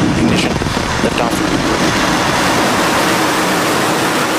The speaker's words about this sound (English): SpaceX lit up the night sky and social media last night with the launch in California of an Argentine satellite. 3, 2, 1.